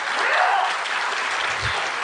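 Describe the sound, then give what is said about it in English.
Steady applause from an audience, many hands clapping densely and evenly throughout, fairly loud, with no voices standing out. “Don't give him applause. That's my applause.”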